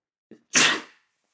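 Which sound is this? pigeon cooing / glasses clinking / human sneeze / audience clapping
human sneeze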